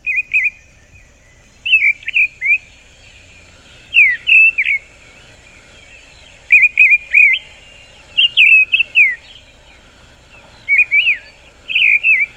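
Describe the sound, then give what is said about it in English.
Mistle thrush song: short, fluty whistled phrases repeated about eight times, each separated by a brief pause, clear and fairly loud with no talking over them. “Remember the story of the missile thrush?”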